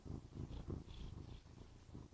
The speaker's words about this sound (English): There she is. Yeah, a little purring kitty. A little purring kitty.